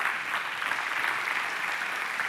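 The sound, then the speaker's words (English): A crowd applauds steadily, a dense wash of many hands clapping at once, sustained and fairly loud throughout with no voices standing out. “yeah, you can clap for her.”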